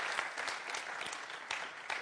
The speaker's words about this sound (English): Give God a strong hand clap for everything he's doing here. Amen.